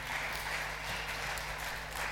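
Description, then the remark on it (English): An audience applauds in a steady wash of many overlapping claps, dense and even in loudness, with no voices over it for about two seconds. “give Arunat a round of applause, shall we?”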